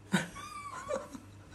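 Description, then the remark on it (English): A small French bulldog whimpers and whines in a thin, wavering pitch, with a short snuffly breath at the start, fairly quiet against a low background hum. “I came here today, and you've brought my little dog, a little Frenchie,”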